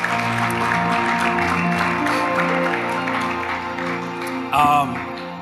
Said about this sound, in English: Can we give God a strong clap offering of praise?